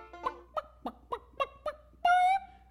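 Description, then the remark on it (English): A person imitates a chicken, clucking in six short, evenly spaced bursts before ending in a louder, drawn-out squawk, with no other talking. “Down here at Farmer Jim Bob's School of Animal Talk, you can learn to talk like a chicken.”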